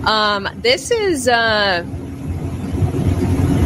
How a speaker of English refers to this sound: This is an hour from the Ambassador Bridge. So this is how long the line of trucks is, an hour away from the Ambassador Bridge.